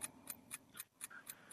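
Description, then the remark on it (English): A clock timer, started for a quick-answer question game, ticks steadily, crisp regular clicks about four per second, fairly quiet, with no voices over it. “And the clock is on.”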